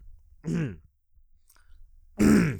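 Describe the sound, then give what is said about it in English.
Two short, gruff throat-clearing rasps from one person, separated by about a second and a half of near silence; the second is slightly louder. “Gotta really clear your throat for this point.”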